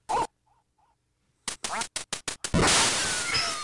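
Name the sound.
video game duck quacking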